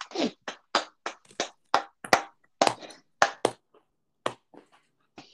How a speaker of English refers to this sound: We got to give all the New York teams a applause.